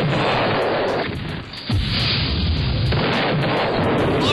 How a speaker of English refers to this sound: Drop the bomb on Lions, baby. Drop the Hiroshima.